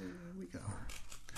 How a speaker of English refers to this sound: We use this beautiful Will Egan provided personalized letter opener